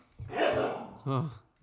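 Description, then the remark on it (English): A dog gives a rough, breathy vocal burst followed by a short, tonal bark, both fairly loud, with nothing else around them. “That ain't no dog. That's family.”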